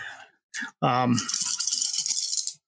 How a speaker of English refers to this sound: So I get to roll my d4s again.